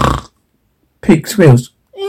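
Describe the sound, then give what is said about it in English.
A person imitates the snoring of a queen in a told story with their voice: one short throaty snort, a pause, then two drawn-out rasping snores and a brief higher-pitched vocal sound at the end. “Queen snores.”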